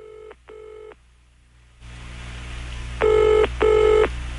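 A telephone rings in two double bursts, the first pair quieter, then a band's opening swells underneath before a second, louder double ring cuts through; no one speaks.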